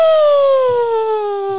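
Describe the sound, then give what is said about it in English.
A voice imitates a fire truck siren with one long, steady wail that slowly slides down in pitch, loud and rich in overtones, with no talking over it. “It's a fire truck, you know, not a big deal.”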